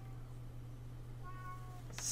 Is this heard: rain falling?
no